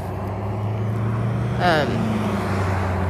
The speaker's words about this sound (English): Oh, this is probably so annoying. I'm so sorry. All this traffic noise.